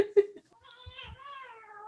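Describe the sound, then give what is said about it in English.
A cat yowls during a cat fight in a long, wavering, drawn-out cry that slowly falls in pitch, following a brief bit of human voice. “Can you hear those cats? They're fighting.”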